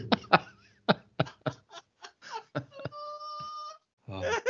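A person coughs repeatedly in sharp bursts, followed by a strained, wheezy moaning tone, then a final rough, breathy cough-like exhale.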